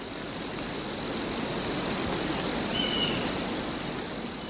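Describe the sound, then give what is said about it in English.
Gentle rain falls steadily in a pine forest, a soft, even hiss of drops that stays at a constant level throughout, with no voices and only a faint high chirp partway through; side two of an album. “And side two was gentle rain in a pine forest.”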